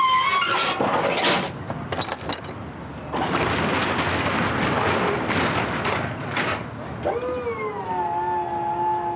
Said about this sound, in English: At the end of this kind of drop-off period is when our staff come with one of our trucks.